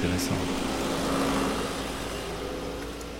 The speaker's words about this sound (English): In the distance, we can hear the rumble of the tractors bringing the harvested fruit to the winery.